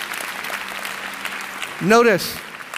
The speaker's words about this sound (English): Come on, can the church clap and say amen to that?